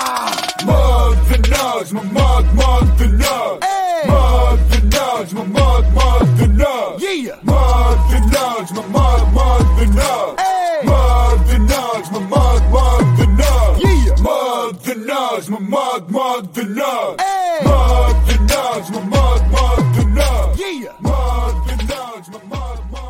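A loud, driving song plays from start to finish, with heavy bass, pounding drums and raw, screamed vocals wailing over the dense instrumentation.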